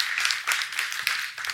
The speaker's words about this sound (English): Go ahead, clap, yes.